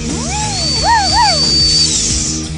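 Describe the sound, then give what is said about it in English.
A dental drill whirs with a thin, high-pitched whine, its tone swooping up and down as it revs over a steady hum for a couple of seconds, with no voices. “As your knuckles get white, as you start sweating profusely in the palms of your hand and in your armpits, as you hear the drill in the background.”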